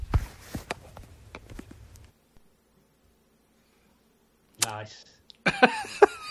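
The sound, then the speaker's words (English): A man's slight, brief cough near the start amid some clicky handling noises, then a stretch of near silence before a voice begins speaking toward the end. “sounded like he got a bit of a cough at the beginning of that.”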